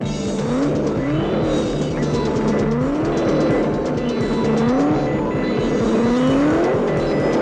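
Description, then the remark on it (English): Race car engines roar continuously as the cars come onto the track, with repeated rising revs sweeping upward in pitch as they accelerate and shift, loud and steady throughout with no voices. “And I'll be giving you the blow-by-blow, play-by-play when the kings and queens of the open road roar onto the track.”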